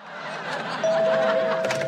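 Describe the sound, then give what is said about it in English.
A doorbell rings with one steady, mid-pitched electronic tone that starts partway through and holds to the end, sounding over a busy background of clattering noise. “It's the doorbell, Al.”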